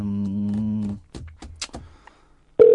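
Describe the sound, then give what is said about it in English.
Phone ringback on an outgoing international call to America: a steady, buzzy low tone for about a second, a few soft clicks and blips, then a louder, higher tone cuts in at the end. No one speaks. “Did it ring before?”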